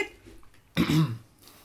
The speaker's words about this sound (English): If it takes you that long to buzz in every question. Right. Just have to clear your throat every time.